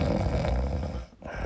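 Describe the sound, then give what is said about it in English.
A dog snoring: a low, rough, rumbling breath that drones steadily, breaks off briefly, then starts again at a moderate level. No talking. “Oh, dog. Are you tired already?”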